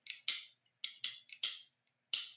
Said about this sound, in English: I want to be known as the guys that kind of started this trend of clicking grill tongs together. That's it? That's all he wants. Can y'all hear that?